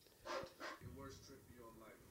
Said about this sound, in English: That's a good dog.